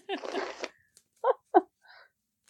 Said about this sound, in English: So this is me riffle shuffling the small,